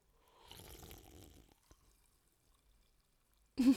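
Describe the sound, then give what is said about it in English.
A sip of sparkling water: about a second of soft slurping and bubbly hiss, then quiet, ending in a sudden loud burst of voice. “I'm gonna need another sip.”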